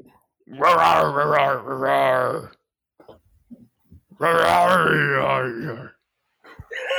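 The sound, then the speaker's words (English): Someone imitates the lion that fades in at the start of a movie, letting out two long, loud, rough-throated roars separated by a pause of small rumbles, with a brief third growl starting at the very end. “The key thing is that little growl after he roars.”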